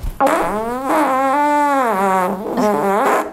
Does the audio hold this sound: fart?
yes